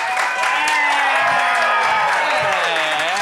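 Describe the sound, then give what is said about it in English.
A crowd claps steadily and loudly while several voices whoop and cheer over the top, welcoming comedian Turner Sparks, host of Lost in America, a dense, continuous wash of applause with rising and falling shouts throughout. “Oh, yeah, guys, get those hands clapping. Get those voices whooping for the very funny Turner Sparks.”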